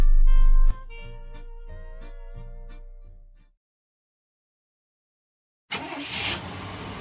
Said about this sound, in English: There goes Pam Yonke across Wisconsin in her suburban truck.